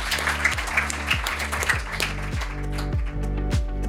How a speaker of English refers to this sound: Please give a big round of applause to our excellent panel. Thank you very much.